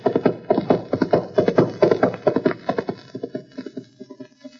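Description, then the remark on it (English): Hooves of the racehorse Snowflake, ridden by a jockey, clip-clop in a quick, steady rhythm on a track, loud at first, then gradually fading as the horse moves away. “Nice horse.”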